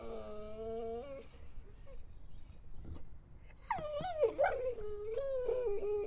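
A dog howls close by in long, wavering, drawn-out cries: a brief howl at the start, a short pause, then a louder, sliding howl that rises and trails off.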